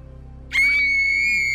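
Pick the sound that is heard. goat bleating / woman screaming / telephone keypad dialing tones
woman screaming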